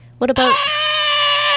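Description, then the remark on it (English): A person imitates Donald Sutherland's pointing, shrill alien pod-person scream from Invasion of the Body Snatchers: a brief vocal lead-in, then a loud, sustained high-pitched wail with dense harmonics holding steady for over a second. “No, like Donald Sutherland in Invasion of the Body Snatchers. Wouldn't it point be more and like scream.”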